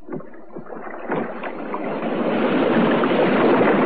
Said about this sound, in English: And then I heard the sound of oars.